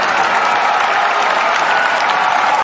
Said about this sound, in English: Where's the cheering button? Where's the cheering button?